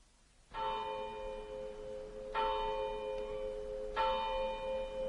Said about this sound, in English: The clock of the village church was striking 9 as I passed through the lodge gates.